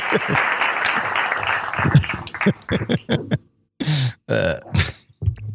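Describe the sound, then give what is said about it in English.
Hand claps for an album's 10th anniversary ring out in a dense, noisy burst, then fade into scattered sharp bursts mixed with gruff vocal noises and short pauses. “three hand clap.”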